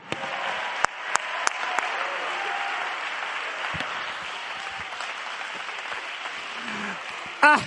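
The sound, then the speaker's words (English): An audience claps hands in a dense, steady wash of applause throughout, with a few sharper claps standing out, faint voices mixed in, and a brief raised voice near the end. “He knows, but he's still saying, come on, everybody, clap your hands and rejoice.”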